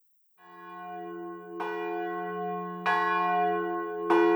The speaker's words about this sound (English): Sext. The bells sounded again at 12:45 for sext.